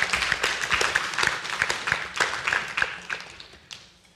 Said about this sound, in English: Let's have just a round of applause for that kind of courage to share God at work in their lives too.